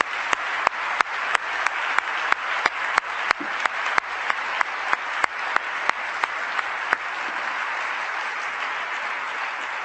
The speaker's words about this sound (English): We're going to show you the Kasdan's brief video directly after we offer yet another round of applause for all of our students, for their parents, teachers, and mentors. So let's have one more round of applause.